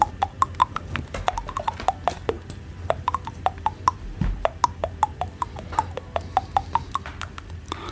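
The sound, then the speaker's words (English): A rapid series of sharp little clicks, tapped on teeth, with shifting pitch that traces out the Warner Brothers Merrie Melodies cartoon tune; steady, lively rhythm with no talking. “Can you hear this tune? Yeah, on your teeth.”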